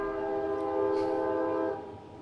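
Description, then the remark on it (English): A train goes by, its horn sounding one long, steady, chord-like blast for about two seconds before easing off. No one speaks. “Excuse me, one moment as this train runs through my brain.”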